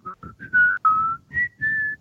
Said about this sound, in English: Are you whistling the Harry Potter theme?